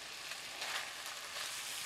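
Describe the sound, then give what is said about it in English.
Steady, crackling sizzle of ham frying in butter, a dense hiss with small pops that holds up close and even throughout, with no voices. “I'm frying it in butter.”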